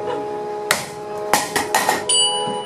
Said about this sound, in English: To make the sound of glass breaking, simply make a glass out of sugar and then break it, just like they do in Hollywood.